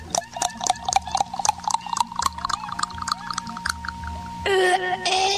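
A drink glugs steadily into a glass as another one is poured, the quick bubbly pulses climbing in pitch as it fills, ending with a short louder burst of sloshing liquid.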